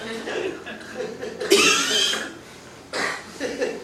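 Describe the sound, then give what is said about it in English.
A person gives a couple of deliberate, forced coughs, one sharp and prominent burst followed by a shorter second one, over a low murmur of background voices. “You just need to cough on them a little.”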